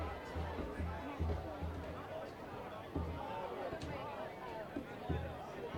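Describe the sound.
A steady wash of crowd chatter and babble from many voices, with occasional louder shouts and low thumps rising above the constant hubbub of the crowd at a high school football game on senior night.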